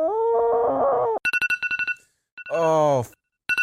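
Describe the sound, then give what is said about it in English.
A loud electronic stream notification alert, triggered by a viewer subscribing and making a donation: a sustained synthetic tone, then a quick run of bright chiming beeps, a sweeping warbly sound, and another chime starting at the end. “A few minutes later, a notification sound would ring, due to the viewer subscribing and making a donation.”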